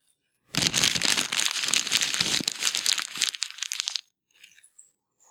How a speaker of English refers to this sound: And then the last one for you is going to be it's going to be crumpling paper.